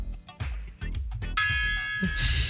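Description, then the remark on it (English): A gong, used as a sound effect to introduce a segment of reading listener texts, is struck about halfway through and its bright metallic shimmer rings out steadily to the end, following a brief stretch of busy, muffled sound. “The text gong.”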